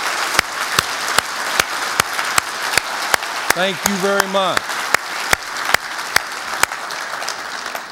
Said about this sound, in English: Now, everybody else, take a look around to those who are standing and give them a big round of applause.